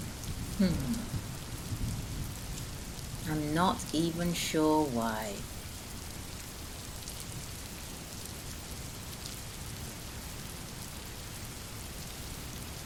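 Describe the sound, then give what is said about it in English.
Steady downpour patters on a hard surface as cars pass by, a continuous dense hiss that holds an even level throughout, with a person speaking briefly over it near the start. “So as all the cars are passing by, I'm here hiding from the rain, and do you know what? It's getting harder.”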